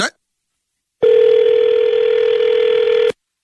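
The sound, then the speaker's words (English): A brief click, then a steady, loud telephone dial tone hums continuously for about two seconds after the call is hung up, and it cuts off abruptly. “You don't hang no damn phone up on me.”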